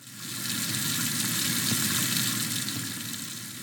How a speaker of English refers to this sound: of course, water running in a sink. Those things seem simple, perhaps an afterthought even.